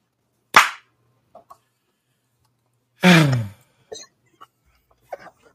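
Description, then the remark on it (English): A single sharp, loud clap of hands from a group clapping in unison, followed by a brief voiced outburst and a few faint clicks and taps in otherwise quiet surroundings. “You're actually going to hear us clap.”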